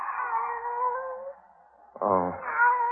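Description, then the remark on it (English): A pet cat named Kitty meows in a long, drawn-out, wavering cry, then pauses briefly before letting out a second rising, insistent meow, fairly loud with no talking. “It's you, Kitty. Barbara's pet.”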